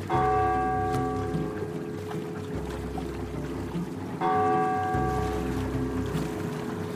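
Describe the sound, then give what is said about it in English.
A church bell strikes three o'clock with slow, loud, resonant strokes a few seconds apart, each ringing out and decaying into a low continuous hum, with no voices. “3 o'clock. It's 3 o'clock.”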